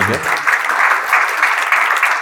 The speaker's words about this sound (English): Yeah, okay, clap. Good.